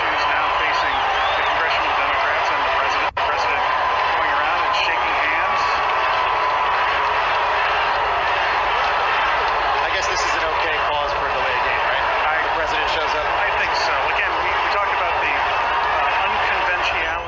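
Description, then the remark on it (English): A large crowd at the congressional baseball game roars with sustained booing at the president of the United States, a dense, steady wall of many voices that holds at a loud level for the whole stretch without dropping away. “Hear all the boos, folks? They're literally booing at him. Those aren't cheers. Those are boos.”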